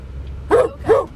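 A dog barks twice in quick succession, two short, mid-pitched woofs about half a second apart, over a low, steady rumble in the background.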